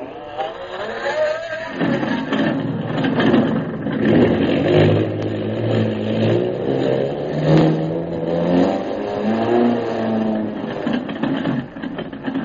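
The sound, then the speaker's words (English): Airplane engines sputter to life and build into a steady, loud droning roar, the pitch climbing and wavering as they rev up, as the repaired plane prepares to take off for Mandalay, with no voices over them. “Turn the motors over, pilot.”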